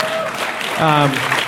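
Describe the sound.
An audience applauds in a steady, dense patter of clapping, with a voice briefly rising over the crowd partway through.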